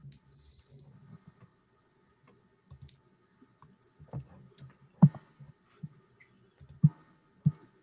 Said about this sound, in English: So I'm going to roll 2 dice and keep the lowest because you don't have any wanted levels.